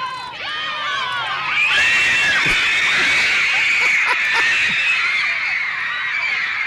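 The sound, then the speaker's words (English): A large crowd of teenage girls screams in sustained, high-pitched excitement as John Lennon's car appears, the shrieking swelling louder and denser partway through and holding at a frenzied peak. “They're told, they're excited, John Lennon is about to appear. And then his car actually appears.”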